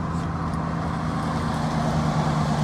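A car doing a turnaround on a road in Coutts, Alberta, heard as a steady, continuous low engine hum and tire rumble from inside the vehicle, fairly loud and unchanging throughout, with no one talking.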